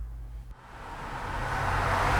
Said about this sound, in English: Yeah, this is it. Burtner and Holcomb. You know, it's strange pretending that I'm at an intersection using pre-recorded background noise and taking some of the low end out of the vocal mic to make it seem like I'm actually recording on the street.